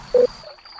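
A babbling brook trickles softly beneath a steady, high-pitched drone of crickets, with a brief low hum rising at the very start before fading back into the quiet flow.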